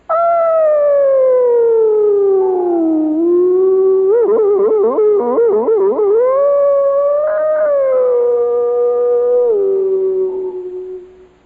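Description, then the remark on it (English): A lone voice hollers a long, sliding yodel over almost the whole chromatic scale, gliding down in pitch, breaking into rapid warbling leaps midway, then rising and falling again. It is loud throughout and rings with echo from an echo chamber before fading. “Then you'll find guys that'll go over almost the whole chromatic scale.”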